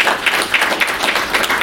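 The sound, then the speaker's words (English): A brief burst of applause from a small group, steady overlapping claps filling the moment at a fairly loud level with no talking. “I picked some of the best HR people for this podcast, so let's give a round of applause for their answers so far.”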